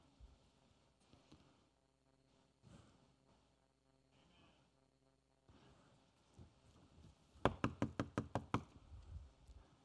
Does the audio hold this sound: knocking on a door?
yes